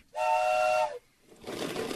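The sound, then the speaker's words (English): A loud, steady train whistle blasts for most of a second with layered harmonic tones from a train heading toward Seattle, running slowly and far behind schedule on snowy tracks, then cuts off into a broad rushing hiss of steam or train noise. “Trains, including the one carrying Jim Larson toward Seattle, are far behind schedule and making their way slowly along the snowy tracks.”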